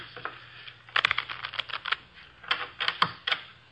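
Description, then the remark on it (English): A deck of playing cards shuffled for a hand of poker, two quick bursts of crisp, rapid fluttering clicks over a faint low hum, with no one talking. “The cards are shuffled.”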